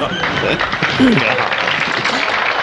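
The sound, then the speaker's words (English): An audience at a magic show applauds and stomps for more magic in a steady, dense roar of clapping, with a murmur of crowd voices mixed through it, holding at an even loudness for the whole stretch. “These people are stomping for more magic.”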